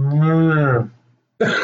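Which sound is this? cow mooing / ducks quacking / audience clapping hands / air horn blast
cow mooing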